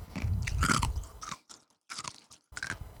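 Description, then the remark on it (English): Loud crunching of ice cubes being chewed, with sharp brittle cracks in irregular bursts separated by short pauses. “Munch that ice.”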